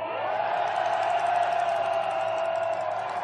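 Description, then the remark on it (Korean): A large crowd at a protest rally roars and cheers in a shout of resistance, one sustained, loud wall of voices holding steady without a break for the full few seconds, with shouts and whoops blended into the din. “여러분, 바로 그렇게 힘찬 기세 다시 한번 항쟁의 함성으로 대답해 주시겠습니까?”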